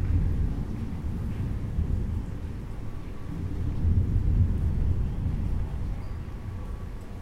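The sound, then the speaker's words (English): A deep, continuous rumble of thunder rolls on through the whole stretch, low and heavy, swelling slightly midway, with a faint wash of rain hissing underneath as raindrops fall on a balcony. “And the sound of the thunder.”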